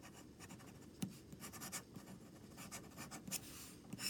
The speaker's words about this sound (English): The nib, when you're writing with it? Yeah, it does feel really nice. I mean, it's definitely steel, so it's not as, you know, bouncy as gold would be, but... Yeah. I'm not against that. Yeah, the flow seems smooth.